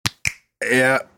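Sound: fingers snapping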